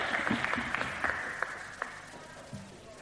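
An audience applauds softly to welcome a woman called up to speak, with scattered, irregular claps standing out over a steady hiss of crowd noise and a few faint murmuring voices.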